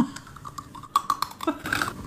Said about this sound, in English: And wanting to know if I can make more videos and eat more of these cookies and that they'll even pay me to send them these. Because they want to hear that crunching sound? This sound?